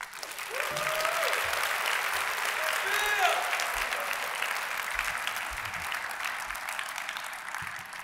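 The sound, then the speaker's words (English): Steady audience applause fills the whole stretch, a dense wash of many hands clapping at an even, sustained level, with a few faint cheers or voices rising briefly through it, for a female author at the end of her talk. “The applause wasn't enough.”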